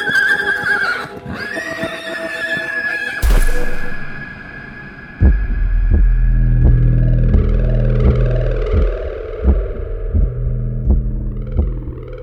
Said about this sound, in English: That's when my horse neighs and bucks me off, and I fall into the sand.